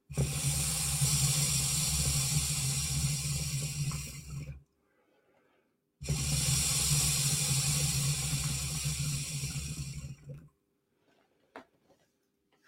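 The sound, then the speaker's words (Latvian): Two long, loud bursts of bubbling and gurgling through liquid in an electronic water pipe as someone inhales hard, each lasting about four seconds with a short quiet pause between them. “Burbuļo trubā jau esam laikam ierauši šķidrumi.”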